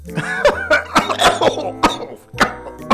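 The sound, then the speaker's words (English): A man chuckles, the laugh breaking into raspy wheezing and then a string of rough, phlegmy smoker's coughs, fairly loud, in sharp repeated bursts. “He chuckled, which turned into a wheeze, and then a smoker's cough.”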